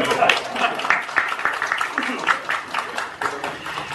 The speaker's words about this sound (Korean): 인천 시민들은 좋으시겠습니다. 이렇게 좋은 의원님들과 지역위원장님이 계셔서 여기에 동의하시면 박수.